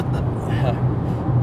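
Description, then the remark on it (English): Steady low rumble of a car interior on the move, a constant droning road and engine noise filling the whole moment, with a muffled voice faintly mixed in. “Yeah, we don't have everything set up here in the car.”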